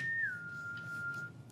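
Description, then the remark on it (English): A single short whistle, a clear steady tone that dips slightly in pitch near the start and holds for about a second before stopping, over a low background hum. “You, as you're standing there, Thistle, you hear a little whistle.”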